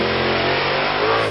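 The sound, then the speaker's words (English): A monster truck's loud, heavy engine revs steadily, its deep rumble and strong harmonic drone sustained throughout, with a slight rise in pitch near the end, as if the motor is being gunned. “Monster trucks out.”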